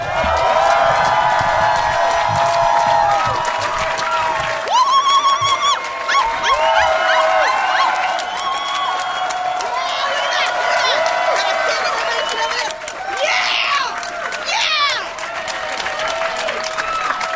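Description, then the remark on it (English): A large standing audience claps steadily and loudly for the whole stretch, a dense wash of applause threaded with whoops, shouts and rising cheers that never dies down. “Thank you for standing up. I live and die by applause.”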